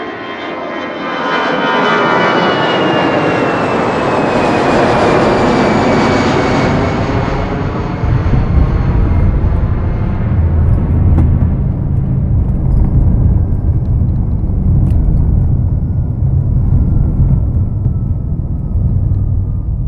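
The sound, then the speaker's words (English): An airplane roars past at Consular Air Base A in Living Zone 1, formerly JFK International Airport, with a loud, sustained engine rumble and a high whine that sweeps downward, then settles into a steady low drone, with no voices. “Living Zone 1, Consular Air Base A, formerly JFK International Airport.”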